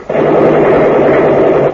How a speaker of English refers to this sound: But the door's locked. And shoot the lock off then.